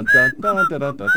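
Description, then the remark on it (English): A person whistles a brief, bright melody from the theme of The Andy Griffith Show: three sustained notes in quick succession, clear and fairly loud, with a faint voiced undertone beneath the tune. “I got to whistle the Andy Griffith theme.”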